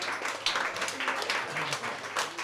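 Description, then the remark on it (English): A crowd applauds steadily, a dense wash of many hands clapping at once, with faint murmurs and a few low voices mixed underneath throughout. It is a round of applause for comedian Stephen Grant after his one-liners. “Yeah, round of applause for Stephen Grant.”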